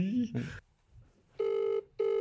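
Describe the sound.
A brief voice speaks, then after a short pause an outgoing call's ringback tone sounds: two steady, buzzy, mid-pitched tones, the first longer and the second cut off.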